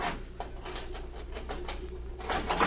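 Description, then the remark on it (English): Metal scraping and grinding as a jimmy pries at a steel cabinet door, coming in a run of short rasping strokes over a low steady hum, moderately loud. “Now, if I can get the jimmy behind the steel door.”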